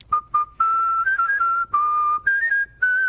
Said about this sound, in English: whistles happy birthday for free to people all over D.C.